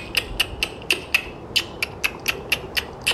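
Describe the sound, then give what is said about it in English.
A voice imitates a killer whale (orca, a type of dolphin) with a quick series of sharp mouth clicks, about a dozen crisp snaps in a steady, slightly uneven rhythm, fairly loud, with no talking. “Make a clicking noise like this,”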